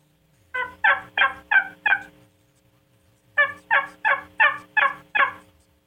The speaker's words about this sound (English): Again, that gobbler's responding. He's communicating. He cuts you off, interrupts your call. It means you're controlling him. He knows where you're at. He's wanting to come to your location or trying to beg you to come to his location.